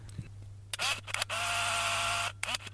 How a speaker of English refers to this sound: Shutter number one. Okay, here's shutter number two.